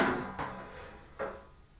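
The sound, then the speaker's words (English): A metal folding chair gets bumped and nearly tips over, giving two short, sharp clatters about a second apart over a low background hum, with no talking. “I almost knocked a metal folding chair.”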